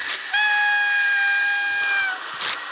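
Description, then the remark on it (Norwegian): A whistle is blown in one long, steady blast lasting under two seconds, loud and shrill with a bright, reedy tone, with breathy puffs of air before and after it. “prøver å få liv I fløyta, bokstavlig talt”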